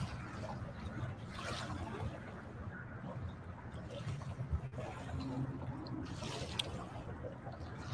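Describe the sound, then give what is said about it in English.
Waves lap softly against a shore at Terrapin Nature Park, just outside Annapolis, Maryland, a steady low wash broken by several brighter splashes that swell and fade at irregular intervals, moderately quiet. “Perhaps you hear the waves in the background.”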